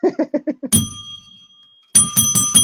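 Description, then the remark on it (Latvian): A loud bell is struck, its bright tone ringing on for about a second before a second strike with quick clattering pulses. A short run of rhythmic voice-like bursts comes just before. “Zvans ir tā kā baznīcā.”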